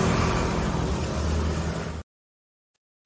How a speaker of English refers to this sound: And the second one is scary. The second one is scarier because trucks are coming by. This is what I'm talking about.